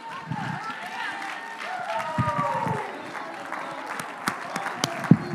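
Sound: audience clapping hands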